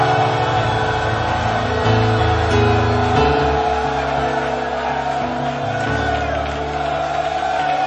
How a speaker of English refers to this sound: Begin to break forth into joyful shoutings of the Lord. For the Lord has done it, and He will surely bring it to pass. Give the Lord a shout and a clap of praise.